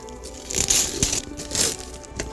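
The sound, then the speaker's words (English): Christmas gift wrapping paper being ripped open on a present that turns out to be a mug, in quick, crinkly bursts: a rustling tear, a sharp snap, then another longer rip and a final short crackle, with no voices. “Hey, it's the same shape and the same wrapping paper.”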